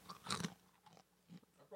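Crisp crunching as someone eats during a show, a loud burst at first followed by a few quieter chewing crunches spaced out over a couple of seconds, with no talking.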